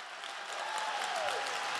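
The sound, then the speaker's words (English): A church audience claps hands unto the Lord in a dense, steady wash of many hands, fairly loud throughout with no talking over it, and a thin whistle-like tone sliding briefly through the middle. “Why don't you stand up, son, and clap those hands unto the Lord?”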